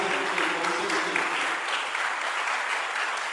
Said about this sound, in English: Clap your hand for them as they go this way. Oh, go ahead and clap your hands for God.